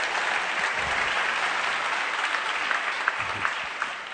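An audience at a library event applauds with a steady, dense wash of many hands clapping, holding at an even loudness for about four seconds with a few sharper individual claps standing out and no voices.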